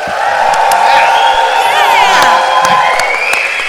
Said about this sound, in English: to prove to the people who are listening later that we are in front of a live audience. Can I hear everybody give a clap and a woo?